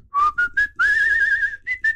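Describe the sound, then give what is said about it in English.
A person whistles a short, clear melody, with several brief notes, one long sustained wavering tone in the middle, then two more quick notes; no talking. “Wait, I'll whistle for you so you can see.”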